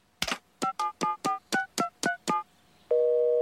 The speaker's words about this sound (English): Phone's off the hook. Everything must be okay.